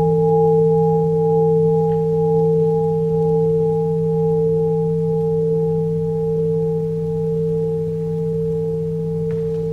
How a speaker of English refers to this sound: And when everyone is ready to receive the sound, you produce, you invite the bell to sound for the first time.